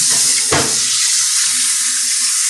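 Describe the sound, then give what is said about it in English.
A steady, hissing rush of tap water runs into a sink, with a brief louder splash early on as a pair of scissors is held under the stream to wash them off. No one speaks. “And I happen to have a pair of scissors that we're going to use that do need a bit of a washing off because they were in the sink.”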